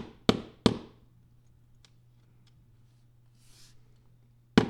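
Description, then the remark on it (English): A painting mallet taps sharply against a wall: two loud knocks in quick succession, a pause with faint ticks and a low hum, then one more firm knock. “Painting mallet engaged.”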